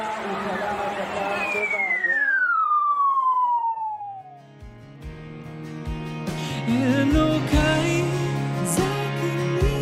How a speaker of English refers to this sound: I can just report so far that we're hearing the siren and people are running for shelter.